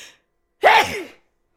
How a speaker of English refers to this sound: so not really much to say besides I'm going to sneeze. Wait.